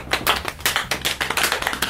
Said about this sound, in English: Small applause.